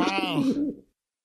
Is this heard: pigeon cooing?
yes